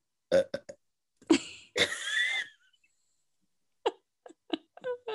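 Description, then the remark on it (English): A loud burp drawn out for nearly a second, preceded and followed by several short, sharp throaty bursts and gulps, with no talking. “Oh no, I don't hold burps in. It's bad for you.”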